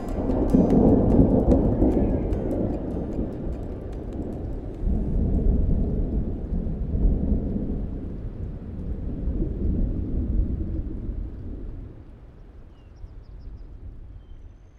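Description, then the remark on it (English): Deep rolling thunder from a late morning thunderstorm at the base of Nakai Peak rumbles on and off over steady rain, swelling in long low waves and fading out toward the end, with no voices. “We'll sit alongside Tanahuda Creek before finally making our way to the base of Nakai Peak, where we'll seek shelter from a late morning thunderstorm.”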